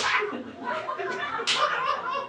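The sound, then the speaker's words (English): Someone slaps their thighs a few times: sharp, fleshy smacks at uneven intervals, fairly loud, with soft chuckling and breathy voice sounds around them. “You can beat your chest. You can beat it so you can hear it getting beat. You can slap your thighs.”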